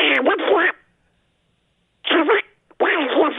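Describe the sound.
A caller from Arizona does a raspy, sputtering Donald Duck impression over a thin phone line, in three garbled bursts: a longer one, a gap of silence, then two more close together.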